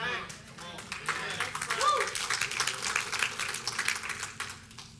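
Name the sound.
audience hand clapping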